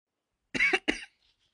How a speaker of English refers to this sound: Ugh, I keep coughing.